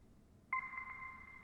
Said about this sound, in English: It's ringing!